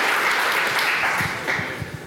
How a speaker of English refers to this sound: That's round one. Round of applause as we go into round two.